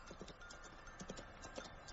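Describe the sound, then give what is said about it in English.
Horse hooves clip-clop in a steady, rhythmic trot, soft against a faint background hiss, with no voices; it is Glorfindel's white horse approaching. “That doesn't sound like a Black Rider's horse.”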